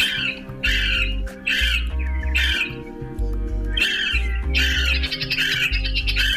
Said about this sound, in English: Here's the courtship call of the male Lewis's woodpecker.